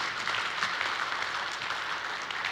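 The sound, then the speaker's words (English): A crowd applauds a woman who has just spoken, a steady, dense patter of many hands clapping at an even, moderate loudness for a few seconds with no voices standing out. “Clap for her.”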